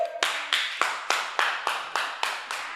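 A single pair of hands claps about nine times in a steady, brisk rhythm, each sharp clap ringing briefly before the next, with no talking.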